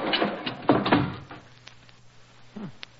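A heavy, sticking door with rusty hinges, beneath a cracked archway, grinds and scrapes as people force it shut, ending in a couple of deep thuds, then a low hum and one last dull knock.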